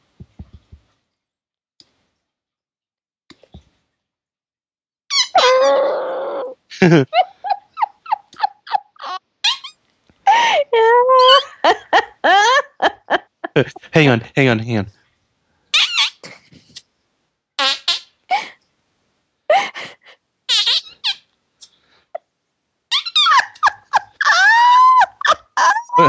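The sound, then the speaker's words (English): Repeated squelchy, sputtering fart noises made by squeezing hands together, coming in uneven bursts of varied pitch and length, some wet and buzzy, with a brief spoken remark between them. “You know what I love more than the fart noises is your breathless enthusiasm over the”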